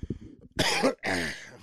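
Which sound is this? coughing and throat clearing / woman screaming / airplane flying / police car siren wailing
coughing and throat clearing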